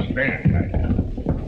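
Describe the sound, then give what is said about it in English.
Horse hooves clip-clop at a steady walking pace as a rider passes two blacksmiths and rides toward a trading post, a handful of moderately loud hoof falls, with a murmur of background voices and noise. “Two blacksmiths stop work as he passes them and rides toward the trading post”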